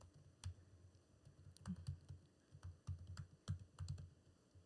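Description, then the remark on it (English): Irregular keystrokes clatter on a computer keyboard, a steady stream of sharp clicks with brief pauses between bursts, over a low background hum and no voices. “Can hear me typing.”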